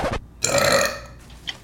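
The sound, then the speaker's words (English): A loud, drawn-out burp rumbles for nearly a second with a raspy, throaty texture, preceded by a short sharp sound and trailing off into a faint hiss. “Felt like the air bubbles finna like explode out my chest.”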